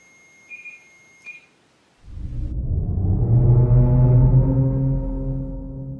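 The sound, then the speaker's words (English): A small electronic alarm gives two short, high-pitched beeps over a faint steady tone, then a loud, low machine drone abruptly starts and keeps running. “If you lived here for a long time, can you step away from that machine? So it stops making that little alarm sound.”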